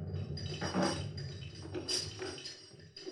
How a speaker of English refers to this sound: That crunchy, bumpy noise you may have heard was our anchor on the way down.